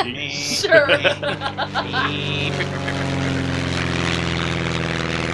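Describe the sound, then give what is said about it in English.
A propeller plane engine sputters in uneven bursts for a couple of seconds, then kicks back on and settles into a steady, droning hum that carries on fairly loud. “The engine just keeps sputtering.”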